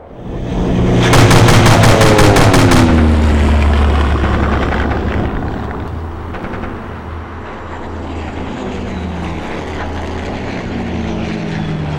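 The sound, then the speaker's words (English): A loud, rapid burst of machine gun fire from a seaplane rattles for about two seconds over the steady droning roar of the seaplane's propeller engine, which keeps rumbling and shifting pitch afterward with no voices. “That meant protecting convoys, or attacking other seaplane mercenaries, and sometimes, both.”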